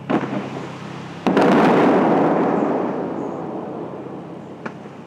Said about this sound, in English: The crew tests a few of the fountain's high-powered shooters.